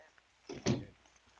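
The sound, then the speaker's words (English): A door swings shut: a short scraping movement followed by a single solid thump that fades quickly, heard alone in quiet. “And close the door after you.”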